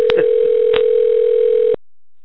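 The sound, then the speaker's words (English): A phone rings with a single steady electronic tone lasting nearly two seconds, loud, with a couple of faint clicks before it cuts off abruptly into silence. “Who's phone ringing?”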